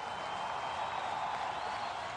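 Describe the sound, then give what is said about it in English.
A steady, dense wash of crowd noise from an audience at a show, many voices cheering with applause blended in, holding at an even, moderate level for about two seconds without any single clear voice standing out. “Listen to them out there. Oh, they're getting hyped.”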